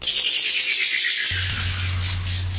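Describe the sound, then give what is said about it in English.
Birds chirping in a steady, dense stream of rapid, high-pitched trills. About halfway through, a low hum joins beneath them. No one speaks. “I think these birds chirping add a nice little element.”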